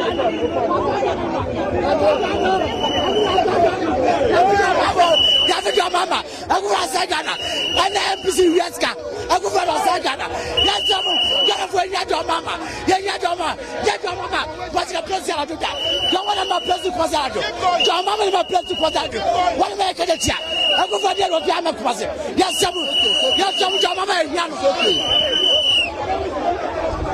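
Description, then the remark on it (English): Dense chatter from a protest crowd fills the streets leading down to the Central Business District, a steady babble of many overlapping voices with no single speaker standing out, punctuated by short repeated high-pitched tones cutting through at intervals. “Let's try and give you an area view of the crowd.”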